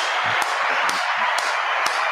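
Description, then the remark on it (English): Four sharp hand claps land in a steady, evenly spaced rhythm over a dense hiss of background noise, each one crisp but not much louder than the wash around it. “Fucking clap it up.”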